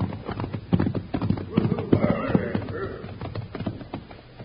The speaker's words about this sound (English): Hey, here come some riders now. And I ain't seen that pinto horse before.